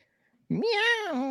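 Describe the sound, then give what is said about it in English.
A single drawn-out meow imitated by a man's voice, meant as a cat drowning while trying to climb out of water, fairly loud, starting abruptly after a moment of near silence and holding a steady, slightly wavering pitch. “If you just no, you just did a normal cat sound.”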